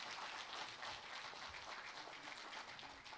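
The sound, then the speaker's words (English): A room full of people at a church service applauding the praise team together, a dense, steady wash of clapping that holds evenly for a few seconds with no voices over it. “Can we give this praise team a hand clap this morning?”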